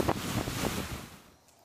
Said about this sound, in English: Right, did you hear the waves crashing onto the shore? If you've ever seen the ocean, you know what a joyful noise that is.